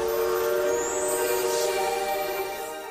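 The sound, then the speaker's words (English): The Disneyland Railroad train, the Disneyland Limited, pulls away on its rails at Disneyland for a grand circle tour, with a long, steady whistle-like tone over a low rumble, loud, easing off slightly toward the end. No one speaks. “We're getting on the train right now.”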